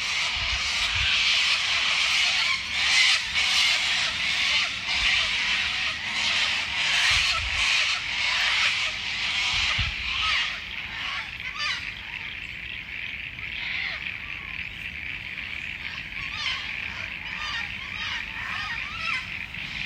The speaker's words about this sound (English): So here's a few seconds of sulfur-crested cockatoos and corellas on my evening walk with bonus frogs. Not exactly restful or calming, but not all of nature is.